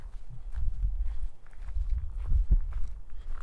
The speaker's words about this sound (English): Okay, back to the parking lot. No more time to stop and watch. I pick up the pace, the gaps between the sounds of crunching gravel lessening.